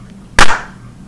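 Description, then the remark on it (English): A single loud hand clap, sharp and cracking, with a short ringing tail that fades within a fraction of a second against a quiet low hum. “That clap was loud. It was in your face.”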